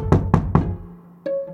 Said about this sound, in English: Around midnight, sheriff's deputies pounding on her door wake her.